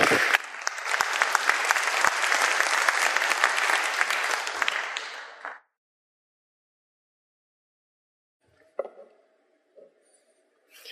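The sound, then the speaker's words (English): A crowd claps in sustained, dense applause for about five seconds, then it cuts off abruptly into silence, followed by a few faint scattered sounds. “So please give everyone a round of applause.”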